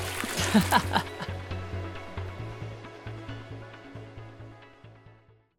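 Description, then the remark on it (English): A loud splash into a river after a drop through an opened trapdoor bursts out at the start, then settles into rhythmic sloshing and gurgling that slowly fades away over several seconds. “The trapdoor opens below you and drops you into the river below, and the splash is louder this time because you're carrying Jude.”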